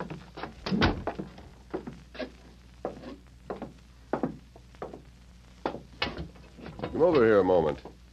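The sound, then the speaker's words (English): A heavy jail cell door clanks and thuds through a string of sharp knocks and clunks, ending with a drawn-out metallic creak as it swings. “Right through that door.”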